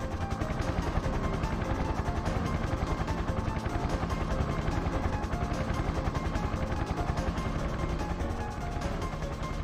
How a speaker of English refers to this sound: More CG shows the chopper taking off and flying through the streets of Manhattan around buildings and closes in on the creature.